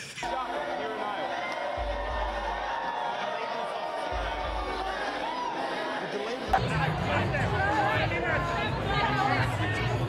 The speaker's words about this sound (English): There's Joe Biden supporters, all five of them. It's a high energy crowd.